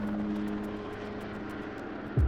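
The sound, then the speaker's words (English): A steady airplane engine drone from a plane flying to Dubai hums throughout, with a low tonal whine and faint rhythmic pulsing, ending with a brief louder low thump near the close. No voices. “the next day, she was on a helicopter and then a plane on the way back to Dubai.”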